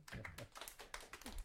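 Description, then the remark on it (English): Soft, light golf clapping: a steady run of quick, quiet hand claps spaced evenly about a quarter second apart, with no talk. “A little golf clap for that.”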